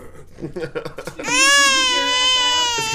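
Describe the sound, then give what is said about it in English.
A baby screams and cries loudly, a sustained high-pitched wail that starts after a second of softer murmuring and talk, then holds strong for nearly two seconds. “Of course, who you hear screaming into your earballs right now is Prince of the Two Stone Kingdom,”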